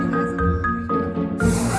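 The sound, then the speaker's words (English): A steady, tonal hum with faint shifting overtones gives way to a sudden loud, broad hiss of aerosol hairspray being sprayed onto a miniature poodle's coat for a grooming spray up at a dog show, continuing to the end. “You're doing some major coiffuring here. Yeah, it's called a spray up.”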